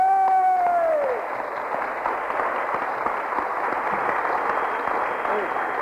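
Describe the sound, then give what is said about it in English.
An audience claps for Jesus, dense overlapping applause that continues at an even level throughout, with a single voice whooping at the start, its pitch sliding downward before fading into the clapping. “Give Jesus a clap.”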